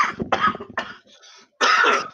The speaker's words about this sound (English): Sorry, man, I just choked in your ear while I was coughing.